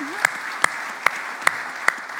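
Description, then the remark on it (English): A short round of applause: five sharp, evenly spaced claps stand out over a soft, steady wash of lighter clapping, with no voices. “And yeah, let's give him a little round of applause.”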